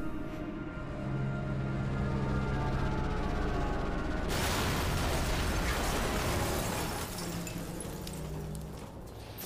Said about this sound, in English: He doesn't so much fly away as crash and explode.